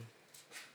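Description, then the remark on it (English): A faint, short sneeze during a church sermon: two quick breathy bursts of hissing noise, the second slightly stronger, with no talking around them. “I was like, who's sneezing right there?”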